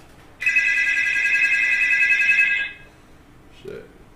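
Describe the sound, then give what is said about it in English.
A loud electronic alert for a new incoming call rings out once, a bright trilling tone held steady for about two seconds before cutting off, followed by a brief faint murmur. “Man, we got a new call.”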